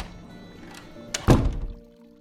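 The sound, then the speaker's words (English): A private restroom door swings shut with a single solid thunk, preceded by a brief click of the latch, then everything goes quiet with a faint lingering hum. “Now, if you just step through, you'll be able to relieve yourself in peace and privacy. Through this door here?”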